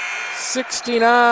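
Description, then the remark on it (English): A loud, harsh buzzer blares and holds steady through the end, following a couple of short bursts of noisy crowd-like hiss. It is the game-ending buzzer of a girls basketball game, sounding as a last three-point attempt misses. “They'll take a three at the beat the buzzer. No good.”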